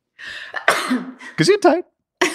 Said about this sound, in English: That wasn't planned, guys. That was real. If we actually leave this in the podcast, that's a real sneeze. Not a character choice.